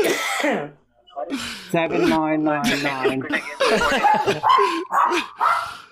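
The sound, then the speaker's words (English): A dog barks and yelps in several sharp bursts, its cries mixed in with background talking throughout. “Yeah, you heard the dog.”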